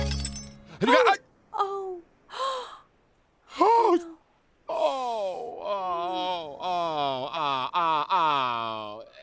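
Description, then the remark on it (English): A sharp burst of breaking Baccarat crystal glass near the start, followed by a person gasping, sighing and letting out a long, wavering wail of dismay that continues to the end. “You see? You broke it. Baccarat crystal.”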